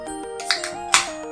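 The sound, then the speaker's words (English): Bright bell chimes in an intro song ring out twice over a steady, stepping electronic melody, each strike sharp and shimmering before fading back into the music. No voices. “Wait, here comes the bells.”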